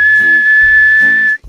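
A single high-pitched human whistle, as used in a whistle language, held on one steady note for over a second, loud, with a soft low murmur underneath before it cuts off abruptly.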